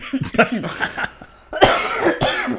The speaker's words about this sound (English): I ain't mean to cough in the mic like that.